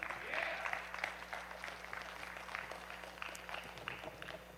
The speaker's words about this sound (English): Is that just a tearjerker to read? You should clap way more than that. For real, that's the gospel.